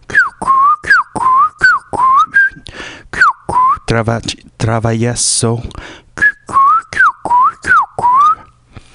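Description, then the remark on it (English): A person whistles a quick tune of short, bright, sliding notes in a steady rhythm, pausing midway while a voice briefly speaks, then picking the melody back up. “A little whistle on the tongue there, guys.”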